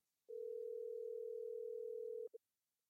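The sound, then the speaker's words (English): A steady telephone dial tone holds for about two seconds as a phone call is placed, then cuts off, followed by a brief short beep. Clear, with no talking over it. “We're going to dive in and get on the phone”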